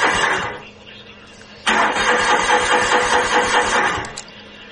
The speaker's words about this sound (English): was out in the Vahutka earlier this morning trying to start the tractor. Oh, that's the wrong one. He had this other one that wouldn't start.